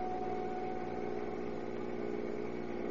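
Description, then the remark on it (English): The engine of a maroon Chrysler Roadster idles steadily with a low, continuous rumble and a faint hum, holding even throughout with no voices. “In one of these cars, a maroon Chrysler Roadster, are three conspirators, Angelo Franny, Tex Wallace, and Harry Moran.”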